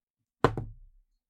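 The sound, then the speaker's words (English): A die strikes a hard surface with two quick, sharp clacks, followed by a brief low rattle as it settles, rolled for a constitution score in a game and landing on a 2. No voices are heard. “Karma, roll me a constitution.”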